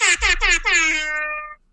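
An air horn sound effect, played to announce a review giveaway winner, blasts in several loud, stuttering pulses, then holds one long bright tone that fades out after about a second and a half.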